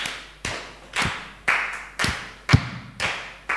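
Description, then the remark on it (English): A group claps together in a steady beat, about seven loud claps roughly half a second apart, each one slightly smeared as the hands fall a little out of sync. No one speaks. “Imagine even right now, we are all clapping.”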